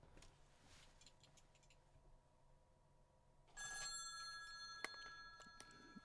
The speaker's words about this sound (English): I'd like for you to just hold on just for a moment while I answer this phone.